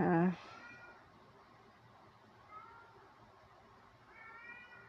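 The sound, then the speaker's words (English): A cat named Panda lets out one loud meow at the start, then two softer, shorter meows follow a couple of seconds apart against a quiet background. “That's Panda, my cat.”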